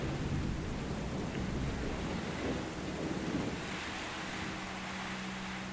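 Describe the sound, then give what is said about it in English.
Steady rain hisses across the whole clip while a deep, continuous rumble of thunder rolls underneath, fairly loud, with no voices. “You listen to the rain, you listen to the thunder.”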